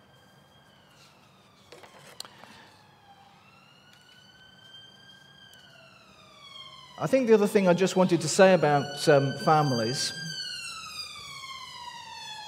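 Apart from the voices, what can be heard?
ambulance siren passing by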